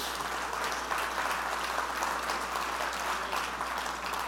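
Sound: audience clapping hands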